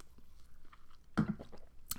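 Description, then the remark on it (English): Someone takes a quick sip of a drink, with a soft slurp and a swallow followed by a brief click of the lips, quiet and with no talking. “I have to take a sip.”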